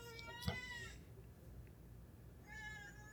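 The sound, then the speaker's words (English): A cat meows twice, drawn-out whining calls for attention with a pause between them, the first longer and the second rising near the end. “You have no reason to be whining at me.”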